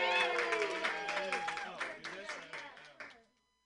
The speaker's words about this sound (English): Put your hands together, everybody.